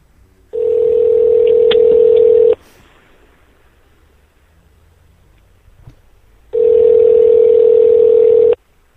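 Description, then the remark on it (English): A telephone line tone during a call transfer: two steady, loud, mid-pitched buzzing tones, each about two seconds long, separated by a quiet pause of several seconds, with no talking. “They're probably tracing the call. I transfer your call.”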